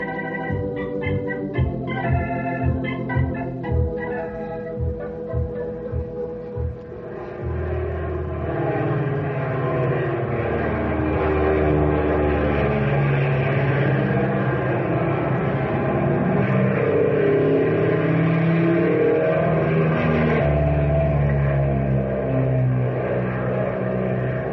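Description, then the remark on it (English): A propeller engine sputters with rapid, chugging pulses, then catches and roars into a loud, steady drone that revs and shifts in pitch as it builds power for takeoff. “What an engine, and she sure handles like a breeze.”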